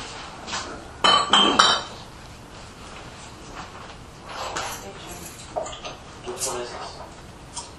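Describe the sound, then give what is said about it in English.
An amber-coloured beer sold as an American Blonde pale ale pours into a glass with a steady, fizzy rush, broken early on by a short burst of bright glassy clinks, then a few softer taps as the foamy pour continues. “I'll tell you as soon as I get it all poured out.”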